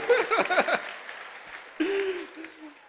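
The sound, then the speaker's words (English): An audience claps steadily throughout, with excited voices and short cheers rising over the applause at the start and again near the middle. “Okay, you're clapping for her. Clap for the woman of God.”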